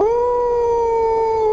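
animal, wolf howling

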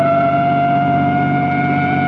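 vehicle, ambulance siren

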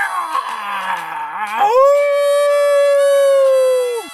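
sound effect, werewolf howling

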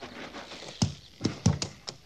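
animal, horse

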